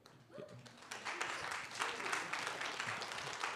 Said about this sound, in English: Just that tepid applause. Oh my goodness, I feel so encouraged.